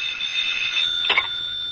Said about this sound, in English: And then suddenly the phone was ringing.